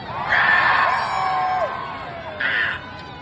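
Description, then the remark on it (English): A crowd at a live show lets out high, shrill evil screeches together in a contest for the best evil screech, a long sustained burst followed by a shorter one a moment later, loud and raucous with a cheering quality. “We had a contest right before the show started to see who could do the best evil screech”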